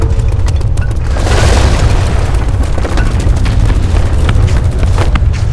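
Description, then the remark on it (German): Sustained heavy gunfire from two shooters, with dense, overlapping shots and booming low rumble, a loud continuous barrage of rapid cracks over a deep roar, with no one speaking. “Hört sich ganz so an, als würden die beiden Verfluchten ganz schön einheizen. Mag sein, aber bald wird denen die Munition ausgehen.”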